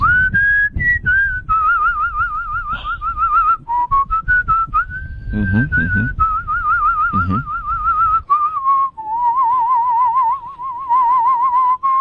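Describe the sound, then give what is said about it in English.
A person whistles a wavering melodic tune with strong vibrato, clear, shifting partway through to a slightly breathier, lower whistle as the airflow reverses from blowing out to drawing in. “No, but actually I can whistle several different ways, including in as well as out.”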